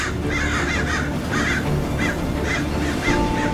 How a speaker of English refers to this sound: A murder of crows. An unkindness of ravens. Clashing in the sky.